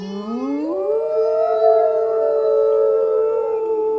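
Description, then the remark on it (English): Children's voices imitate a fire engine siren, sliding up in pitch and then holding a long, steady wail for several seconds without any talking. “Can everyone do a fire engine sound up to that?”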